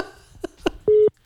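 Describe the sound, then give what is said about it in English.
An accidental FaceTime video call ringing out: after a few soft taps, a loud, steady mid-pitched electronic tone sounds for a moment, stops briefly, then starts again. “You FaceTiming him? I did not mean to FaceTime.”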